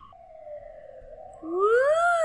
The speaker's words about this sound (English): hold for sirens. I'm gonna hold for sirens. That's gonna make it really hard to see when I have to go edit it.